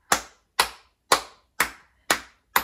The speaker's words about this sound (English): So you should be clapping your hands, shaking your head from side to side, and your tongue going in and out.